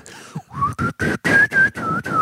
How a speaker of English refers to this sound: Most people can't whistle well.